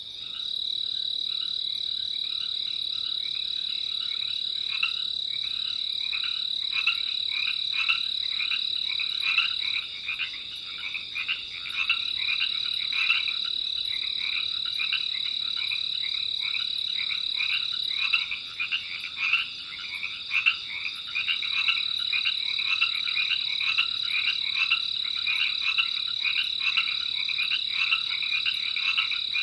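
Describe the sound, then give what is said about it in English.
A dense chorus of Pacific tree frogs, mostly green with a black stripe through the eye, starts calling after the rainy season and calls continuously, many overlapping croaks pulsing rapidly over a steady high insect-like drone, loud throughout with no voices. “I hear some Pacific tree frogs starting to call.”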